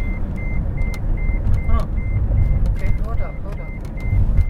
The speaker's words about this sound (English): So guys, our cars are going crazy, beeping.